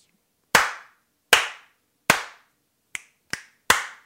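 Six sharp hand slaps ring out loud with no talking: three evenly spaced, then three quicker ones, two of them lighter and shorter. The slaps are given as a rating out of five.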